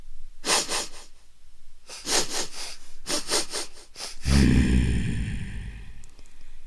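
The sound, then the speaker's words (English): A storyteller's voice imitates the wicked Oni of a Japanese folk tale sniffing for the smell of humans: several quick, breathy inhalations in bursts, followed by a deeper snort-like sound, with no words spoken. “And then the wicked Oni started to sniff.”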